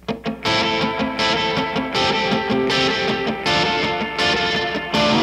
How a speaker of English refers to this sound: Reverb, a very basic reverb.